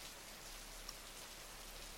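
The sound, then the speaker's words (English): Soft, steady patter of light spitting rain, a faint continuous hiss with occasional tiny drops, quiet, no voices. “When we're finished, we slip back into our shoes and step out into the spitting rain, shawls wound around our heads, ready to continue our ascent.”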